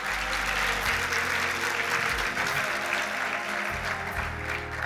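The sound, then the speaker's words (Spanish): An audience applauds the King of Kings in a steady, dense wash of clapping that holds at full loudness throughout, with a low sustained tone underneath and no voices rising above it. “Aplauda al Rey de Reyes, señores, señores.”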